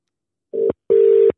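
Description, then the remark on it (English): A phone call ringing-out tone sounds twice, a short steady electronic beep followed by a longer one, clear with silence around it and no voices. “Call him one more”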